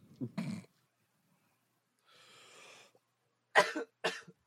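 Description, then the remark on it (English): A person who inhaled a lot of smoke coughs in several harsh bursts: one at the start, a raspy breathy wheeze in the middle, then two more sharp coughs close together near the end. Fairly loud, no talking. “I had a cough, I'm sorry.”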